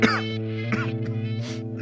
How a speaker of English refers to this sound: That's a dry cough